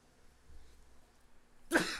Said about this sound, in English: I gotta sneeze.